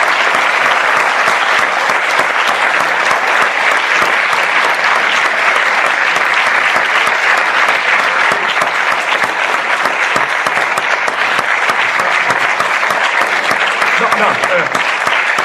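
Sustained applause from an audience at the end of a lecture, a dense crackle of many hands clapping at a steady, loud level throughout with no let-up.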